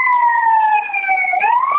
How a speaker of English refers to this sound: The only thing I was going to say, the ambulance. Yeah, yeah, a lot of shit's going down in Vancouver.